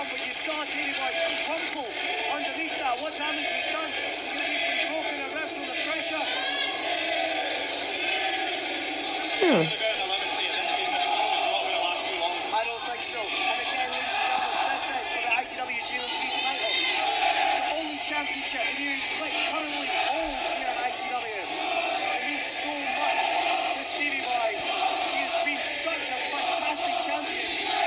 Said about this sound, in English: I mean, you can hear that the crowd are 50-50 in this match. Like, you've got, like, saying to Davey to fuck him up.